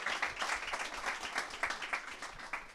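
An audience at a comedy roast show applauds a comedian steadily, a dense crackle of many hands clapping at once with small bursts rising out of the wash, moderately loud and with no voices over it.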